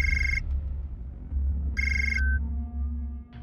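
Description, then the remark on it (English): A phone rings twice, each ring a short, bright electronic trill separated by a pause of over a second, heard over a steady low rumble with no one talking. “I can even control your phone from in here.”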